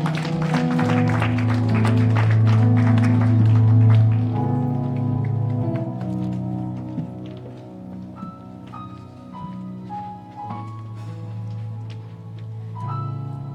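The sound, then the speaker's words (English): A church audience at an Easter service claps steadily for the praise and worship singers over sustained organ-like keyboard chords, the applause strongest in the first few seconds before thinning out while the low held chords continue. “Can we give them a clap offering?”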